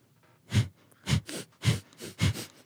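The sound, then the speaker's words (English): Sharp, forceful breaths pumped in quick succession with a pump of the belly: about seven rhythmic bursts of rushing air, sharp inhales and sharp exhales alternating, each with a low thump, no talking. “It's like, it's a little pump in your belly and you breathe in sharply and you exhale sharply.”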